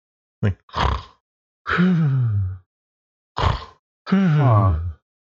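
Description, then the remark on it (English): A person imitates soft, decorous snoring as Foley: two cycles of a short snorting intake followed by a drawn-out, voiced, groaning exhale, with quiet gaps and no talking. “Yeah, he's doing some decorous snoring.”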